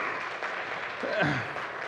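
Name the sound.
audience applause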